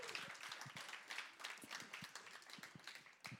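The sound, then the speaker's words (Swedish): An audience applauds, a dense, steady patter of many hands clapping together for a few seconds, with no talking over it. “En applåd till Anton igen.”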